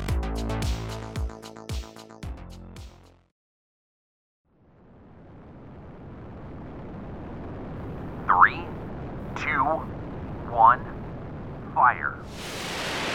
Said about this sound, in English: The MTCR-class missile blasted off from the Transporter Erector Launcher, which was parked in a field on the Liping military base in China's southeastern Jingzi province.